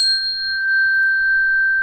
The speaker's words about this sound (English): I have this Windstock chime. Oh. It's a trio of some pure tones. That was a gift many many moons ago, and it's just really puts you right in the moment.